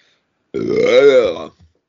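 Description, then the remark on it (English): A single long, loud, drawn-out burp, rumbling with a throaty tone for about a second before cutting off abruptly. “I've been getting the burps.”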